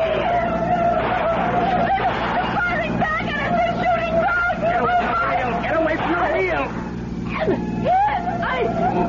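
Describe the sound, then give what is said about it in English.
A car chase with tires skidding and squealing in repeated swooping screeches over a steady, droning engine, with muffled voices clamoring underneath throughout. “Hold the car steady.”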